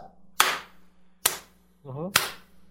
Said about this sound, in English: Allow me to slow clap for that.